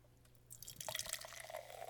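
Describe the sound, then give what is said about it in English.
A carbonated drink is poured into a glass, the splashing stream starting after a brief quiet moment and continuing steadily with a bright, fizzy crackle as the glass fills. “And the pour.”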